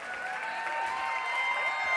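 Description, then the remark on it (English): An audience in a church claps steadily and loudly in a dense, continuous wash of applause, with some faint whoops and sustained tones mixed in, and no talking over it. “You can stop clapping.”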